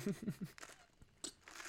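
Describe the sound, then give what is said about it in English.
Someone sips a drink: three quick, soft gulping swallows, then a brief wet slurp a moment later, all quiet with no talking. “I'll let you think about that while I sip my drink really quick.”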